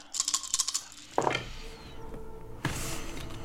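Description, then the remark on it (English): A rapid rattle of small hard clicks, like several dice tumbling across a table, followed by a couple of louder knocks and clatters as they settle. No one speaks. “I rolled 3 tens.”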